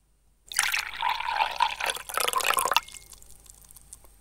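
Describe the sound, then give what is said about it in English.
Liquid is poured live into a glass next to the microphone, amplified, as part of a game of guessing the amount in millilitres: a loud, splashy gurgle lasting about two seconds with a faintly rising ringing tone, then stopping abruptly and leaving quiet. “Live for an amplified pour into the glass next to the microphone.”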